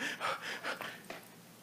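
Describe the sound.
Quick, heavy panicked breaths after waking from a nightmare in the middle of the night, about five ragged inhales and exhales in rapid succession, fairly soft, fading into quiet with no talking.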